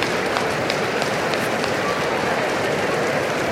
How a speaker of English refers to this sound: How about this morning? They couldn't do it. How about you guys stomp your feet and see if you can get it to shake?